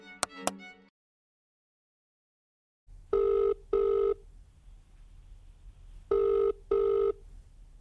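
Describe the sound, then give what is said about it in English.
A few sharp clicks, a pause, then the ringback of an outgoing phone call to a woman who had opened a case: two double rings separated by a gap, heard clearly through the line over a low hum. “There's a phone number attached from when she called to open the case originally, so here's hoping she hasn't changed it.”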